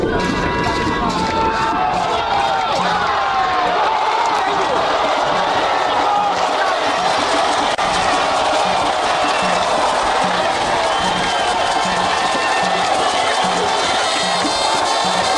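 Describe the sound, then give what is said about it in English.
A large football stadium crowd roars and sings together in a loud, continuous wall of voices, chants rising and blending with cheering throughout, cheering on Ghana's team during a match against Morocco. “As the place erupted with the crowd singing and cheering them on, Team Ghana took advantage of the momentum and took the lead.”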